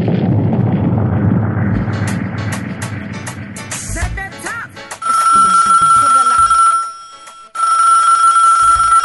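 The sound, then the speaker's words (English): A deep, rumbling roar gives way to a telephone ringing loudly, a steady electronic tone sounding in two long bursts separated by a brief pause. “Oh boy, you know when you have to answer this phone, because you know when the phone rings, you know, when the phone rings, you know, must be some overseas calls.”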